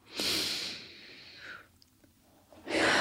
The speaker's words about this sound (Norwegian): Før vi begynner, bare trekke dyp pust.